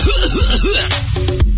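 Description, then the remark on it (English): A person makes a few groaning, rising-and-falling vocal sounds, then breaks into several short, harsh hacking coughs in quick succession, fairly loud, with no words spoken. “And then I'll start coughing.”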